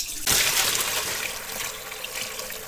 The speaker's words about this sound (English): Well, we got all of the fat skimmed off, and we're just gonna pour it all through a colander and pitch out all of those solids. Then we'll have our stock ready to go.